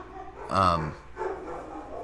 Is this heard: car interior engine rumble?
no